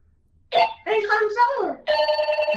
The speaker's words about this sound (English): Oh, it rings like that, like a cell phone. Yeah, it sounds like a home landline.